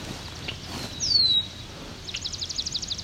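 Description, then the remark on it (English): Red-winged blackbirds calling along a swamp trail: a single bright, high whistled note, followed a moment later by a quick, even series of short, high chips over a soft, steady low rumble. “Okay, some red-winged blackbirds.”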